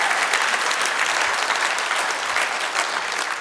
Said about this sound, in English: Preacher, what about clapping our hands? Is that in the Bible? Psalms chapter 47. Oh, clap your hands, all ye people.